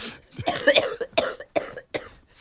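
A loose, wet, productive cough repeats in a rough run of about five bursts over a couple of seconds, heavy and phlegmy, with no talking.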